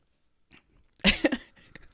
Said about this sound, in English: And I'm sorry, I was mid-sip. You were mid-sip. I saw you pick it up and think, that's pretty brave.